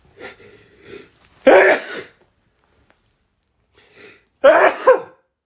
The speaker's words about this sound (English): It was a dry sneeze.